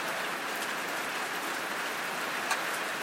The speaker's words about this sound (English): I don't know what you think about the rain. I know what … thinks about the rain. He thinks that, you know, since God provides, should we be sad about it?